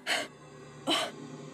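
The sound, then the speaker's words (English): A voice imitates exhausted panting: two loud, breathy huffs about three quarters of a second apart, with quiet background noise between them. “So he just like flops onto the ground, like panting, like.”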